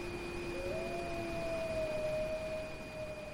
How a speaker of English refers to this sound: Haunting and beautiful, a wolf's cry pierces the darkness of a Montana night. The wolf believes it's answering a call from a fellow Canis lupus, but it's been hoodwinked.